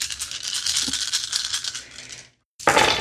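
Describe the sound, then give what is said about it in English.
Dice rolled in a tabletop role-playing game rattle and clatter for about two seconds, stop briefly, then a second sharp burst of rattling follows. Fairly loud, with no voices. “So roll 4 damage for dice, and you get double 9s.”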